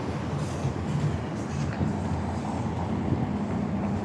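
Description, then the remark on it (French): A police car drives along the street on its patrol round, a steady low engine and road rumble running the whole time with no siren and no voices. “Je vois une voiture de police qui fait son tour.”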